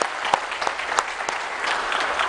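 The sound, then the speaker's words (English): An audience claps steadily in thanks for a departing YAC ministry member's service on her last Sunday, a dense wash of many hands with a few sharper individual claps standing out, sustained at an even, fairly loud level throughout. “So we would give her a round of applause for her service.”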